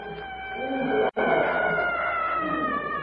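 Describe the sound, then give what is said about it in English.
Eerie, wavering howls of a distant war cry of the yellow men resound through the night for a few seconds, layered voices holding high drawn-out tones with only a momentary break partway through. “From a distance, the weird cry of the yellow men resounds eerily through the night.”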